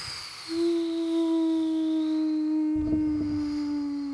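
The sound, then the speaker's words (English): A long, sustained howl holds a steady pitch with faint overtones, joined midway by a rougher burst of lower sound, all ringing out loud and clear without any talking. “The howling gets louder and louder.”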